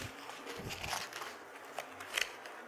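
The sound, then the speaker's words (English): Crinkly paper rustling as a sheet listing prayer requests and scriptures is unfolded, with a run of soft crackles and a few sharper crisp snaps toward the end. No voices. “This paper right here, it says transition and move.”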